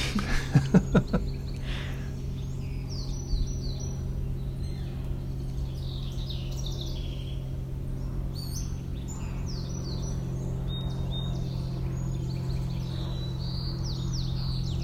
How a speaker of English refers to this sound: And a song sparrow.